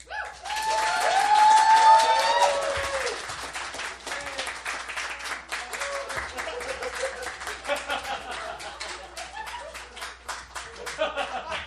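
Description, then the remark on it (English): Steady, pointed mock clapping imitating the Pelosi clap runs for several seconds, sharp claps repeating at a fairly even pace, with laughter and voices audible at the start before the claps carry on alone. “practicing my Pelosi clap.”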